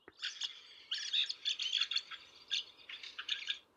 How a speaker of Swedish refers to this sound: Vad var det då? Björktrast. Fast vi ska fördjupa oss i det här med en expert lite senare. Så att, men jag kan säga att björktrasten är lite av en värsting. Den jagar liksom bort andra fåglar. En stökig typ helt enkelt.